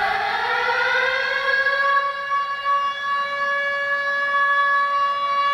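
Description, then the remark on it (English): An alarm siren sound effect wails steadily, its tone gliding slightly upward and then holding a sustained, piercing pitch with strong harmonics, with no voices over it. “Ring the alarm, we've got a new subscriber to our Patreon.”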